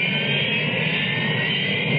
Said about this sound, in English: What is a Harrier? It isn't a helicopter, but it could land in your backyard. Harrier. It isn't a conventional jet, but it can match the speed of sound.